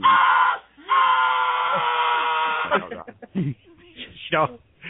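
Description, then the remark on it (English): A person imitates a growling noise a woman let out, voicing a loud, raspy growl in two drawn-out bursts, a short one then a longer one lasting almost two seconds, followed by a few brief breathy vocal fragments. “she let out this growling noise.”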